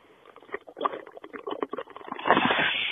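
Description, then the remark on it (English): A bubbling bong hit heard on a voicemail: a rapid, uneven run of watery gurgles builds for a couple of seconds, then gives way to a steady rushing hiss, over a thin, phone-like line. “Oh, that's a bong hit.”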